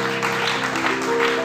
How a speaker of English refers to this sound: Clap your hands for God like that. Amen.